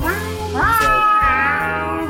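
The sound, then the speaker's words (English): A person voices a drawn-out, rising and falling meow, imitating a cat, loud, over a steady low background hum. “You gotta meow.”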